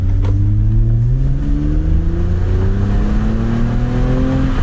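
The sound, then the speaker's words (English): The 3.5-liter V6 engine of a TRD Camry accelerates steadily, its pitch climbing smoothly through a gear and continuing to rise, loud and continuous with no talking. “Acceleration's good. You don't need to mash the throttle to really get there. The V6 is torquey enough.”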